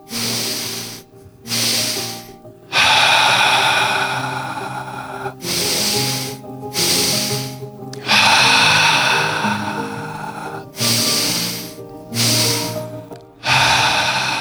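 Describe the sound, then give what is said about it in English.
Loud breathing in a steady pattern during a breathing exercise: two quick sniffing inhales through the nose, then a longer, airy exhale through the mouth, repeated about three times over a faint sustained tonal hum. “Breathing in twice through the nose and out through the mouth.”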